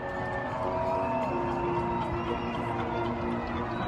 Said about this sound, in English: About at 7 p.m., going outside and cheering for all the caretakers that are coming on and off shift. So here in New York City, our friend Rosanna Scotto captured this.